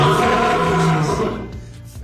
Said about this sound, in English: That's a wild lion, everybody. Ooh, let's hear that one again.